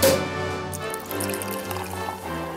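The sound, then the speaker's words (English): Liquid, a spiced mule cocktail, poured steadily into a glass, a continuous splashing trickle with a ringing tone that lasts a few seconds with no talking. “And now it's time for the weekly royal cocktail.”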